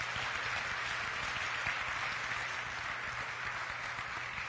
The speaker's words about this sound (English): Let's give it a clap offering to the Lord. Vamos a darle un aplauso al Señor.